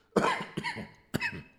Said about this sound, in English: My apologies, guys. Still got the cough, but let me just read that again.